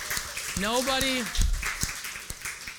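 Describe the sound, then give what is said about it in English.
A scattered round of applause from an audience for the person running ProPresenter, with sharp claps spread across the moment and a single voice letting out a rising cheer early on. “and I just want to give her a round of applause.”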